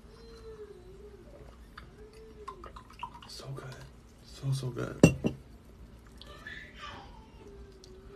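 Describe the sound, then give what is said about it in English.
Liquor is poured into a glass, with a few clinks of glass and a brief splashy burst midway, while a person talks quietly around it. “I want some more of this drink first. You know, liquor, baby.”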